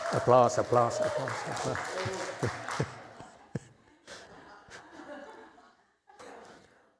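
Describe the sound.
A burst of audience applause mixed with laughter and chatter, dense and loud for a few seconds, then thinning to a few scattered claps as voices continue.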